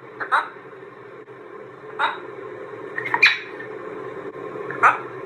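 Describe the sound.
A macaw mimics human speech in four short, raspy, word-like squawks spaced about a second or more apart, each a brief bright burst over a steady low background hum.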